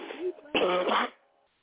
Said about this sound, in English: Deep breath and cough. Deep breath.